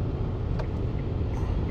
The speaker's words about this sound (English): There's a car on my ass right now. I'm on the interstate. And this motherfucker is... I mean, he's flying.